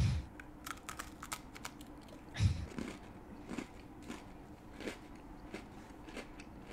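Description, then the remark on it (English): Crunching of a crisp snack, called especially crunchy and crunchier than an Oreo, being bitten and chewed, with irregular sharp crackles and one louder, heavier bite partway through, against a quiet background. “These are like especially crunchy.”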